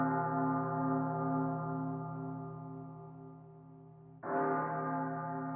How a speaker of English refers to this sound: It's a death bell. Someone died." "How do you know that?" "You can tell by the intervals. Listen.